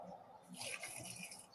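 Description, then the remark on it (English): About 2 liters of water pours steadily into a fence post hole with bagged postcrete on a hot day, a splashy rush that starts abruptly after a brief quiet moment and continues without pause, with no voices. “It does say on these bags, 2 liters of water on a nice hot day like today, because it gets absolutely scorching, as you may see from my brow, I'm sweating.”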